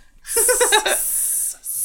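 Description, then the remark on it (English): A person imitates a snake's hiss: a quick voiced, sputtering burst that trails into a long, loud hiss, followed by a brief pause and a second hiss. “That's a snake scatter.”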